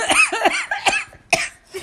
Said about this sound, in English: Oh my God, I'm making myself cough. I need to calm down. Water, please.